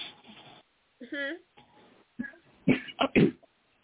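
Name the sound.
clearing throat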